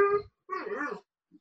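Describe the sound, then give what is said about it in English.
A dog whimpers in a bedroom of a house where dogs are boarded, in two quick bursts, a short high whine followed by a longer wavering one, then a faint little squeak after a pause. “I work as a dog walker, and I also do dog sitting and dog boarding at my house.”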